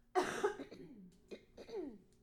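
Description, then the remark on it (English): A person clears their throat several times in quick succession before singing a song, a rough, raspy burst followed by two shorter, softer hacking scrapes, with no talking. “I just have to clear my throat.”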